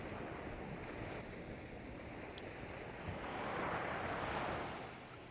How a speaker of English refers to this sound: Even as you still hear the ocean waves,